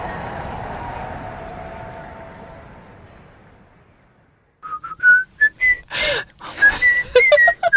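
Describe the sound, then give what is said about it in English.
A bouncy, upbeat tune is whistled in short, lively phrases with quick pitch jumps, following a fading low hum and a brief silence. “Don't laugh at me whistling in a jaunty fashion.”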